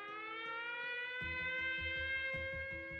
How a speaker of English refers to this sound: Outside, sirens wailed.